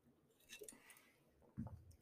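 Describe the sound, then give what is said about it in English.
Someone takes a quiet sip of water, with soft wet mouth clicks and a gulp near the end, and no talking. “I need a little sip of water again.”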